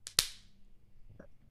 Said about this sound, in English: Can you clap? My hand's still shit. Let's do a high five. This hand. Okay. Ready? Mm-hmm. 1, 2.